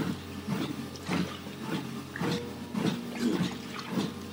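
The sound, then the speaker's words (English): Wet gulping and swallowing sounds repeat in a steady rhythm, about every half second, as someone drinks water. No one speaks. “Let's have some water.”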